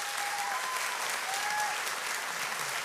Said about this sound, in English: I'll insert clapping.